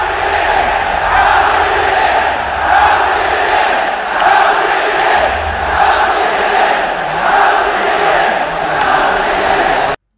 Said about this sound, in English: So that's the crowd after game one of LGD versus OG. They're going to yell again in a second when LGD comes out of the booth.